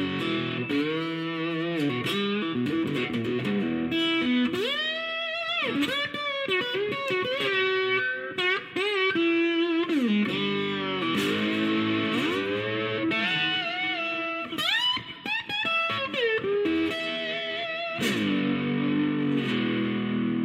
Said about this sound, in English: So when you add a little distortion to these Oahu pickups, you know, the clean sound is nice and rich. And then when you add a little distortion to it, these things get pretty gnarly.